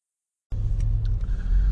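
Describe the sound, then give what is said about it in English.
A steady low rumble from inside a moving car driven to work on a Monday morning, with a faint high whine and a few light clicks above it. Starts abruptly after a short silence and holds constant. “From inside my car.”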